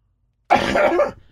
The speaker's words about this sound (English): Guys, I got a real scratchy throat because of my medication, but it's not COVID, okay? I turn off the microphone, I cough, and I forget to turn it back on, so you guys are not hearing me.